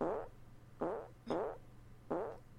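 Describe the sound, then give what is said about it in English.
A string of four short, buzzy fart sound effects, each a loud, tonal burst that quickly fades, with brief gaps between them over a faint steady hum. “Why have you stopped playing fart clips while I'm eating pasta bolognese?”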